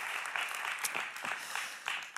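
A crowd applauds steadily for a couple of seconds, a dense wash of many hands clapping at once with scattered sharper claps standing out, fairly even in loudness throughout.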